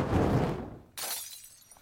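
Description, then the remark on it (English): A Molotov cocktail is thrown: a low, roaring whoosh fades out, then a sudden bright crash of breaking glass bursts in and scatters into tinkling fragments as the bottle shatters loudly, with no voices. “This Molotov cocktail is brought to you by communism!”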